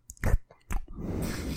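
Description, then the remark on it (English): Wet, noisy mouth sounds of a person drinking a glass of water: two short slurping gulps, then a steady, sloppy lapping and splashing that carries on to the end, with no talking. “He's drinking it like a little dog out of a bowl.”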